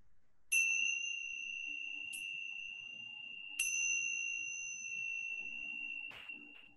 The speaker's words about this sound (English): And I read with these little tangsha bells. So I'm going to ring them three times. And then I'll move through the poems, ringing up chime after each one.